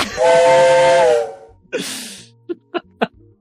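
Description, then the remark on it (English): A steam train whistle blows one long, steady, shrill chord for about a second, then a burst of hissing steam and three quick, rhythmic chuffs. No one speaks. “I'm on the anti-love train, and that's it. That's my whole take. There we go. Choo-choo.”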